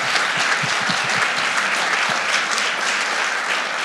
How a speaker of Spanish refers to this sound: Si usted lo cree, dale un aplauso fuerte, Señor.